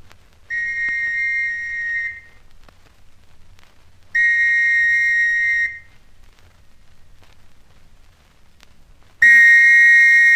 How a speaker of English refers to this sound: Police whistle again, I think. Hope they won't notice that I'm only one.